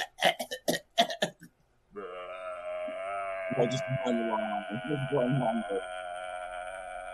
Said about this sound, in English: … starts burping and doesn't finish until you reach the bar